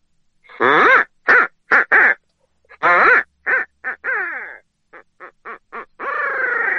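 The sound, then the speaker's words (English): A person imitates an owl call to get a turkey gobbler to sound off, giving a run of loud hoots, then a quick series of short, choppy laughing notes that ends in one drawn-out, wavering call. “You can also throw a little bit of what they call a laugh in that owl call.”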